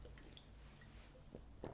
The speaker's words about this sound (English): I just take a little sip really quick.